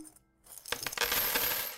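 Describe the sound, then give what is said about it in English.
A quiet pause, then a burst of metallic clinking as a pile of coins spills out of an opened piggy bank and jingles together in a steady rattling stream, fairly loud. “Well, let's open those piggy banks and see how much we have.”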